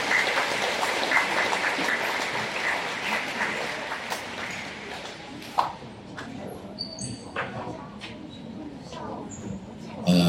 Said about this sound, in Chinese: 我们一起来合影啊，各位来，好，掌声，在掌声中合影。